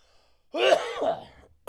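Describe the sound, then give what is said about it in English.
A harsh, violent coughing fit: two loud, raspy hacks run together over less than a second, strained and throaty, with no talking around them. “You just blew a lung.”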